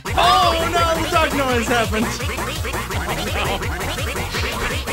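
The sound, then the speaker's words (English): A loud duck quack sound effect plays from a computer: nasal, buzzy quacking pulses that repeat rapidly and steadily for several seconds. “Oh, no, the duck noise happened.”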